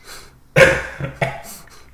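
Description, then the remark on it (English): A wet cough bursts out in two or three quick, phlegmy hacks, loud and raspy, with a breathy pause between them and no talking. “It's a wet cough, don't worry.”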